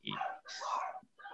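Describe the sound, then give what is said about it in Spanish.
A dog barks: two drawn-out, harsh barks back to back, then a brief pause before a third bark begins. No one talks over it. “tiene toda la razón, el perrito, que me estaba gritoneando que no era así”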